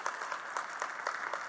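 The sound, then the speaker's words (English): An audience claps steadily, dense overlapping hand claps forming a continuous, moderately loud wash of applause with slight rhythmic peaks, and no voices on top. “You can give one more hand. We'll just keep clapping all morning here.”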